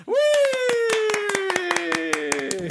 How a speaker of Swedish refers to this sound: Alltså gud, jag skulle vilja ha en stor applåd.